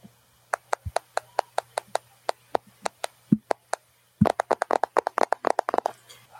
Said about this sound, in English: Let's write a reminder to ourselves 4 hours from now that says self-care practice. Sounds good. Doing it right now. Tap, tap in on my phone.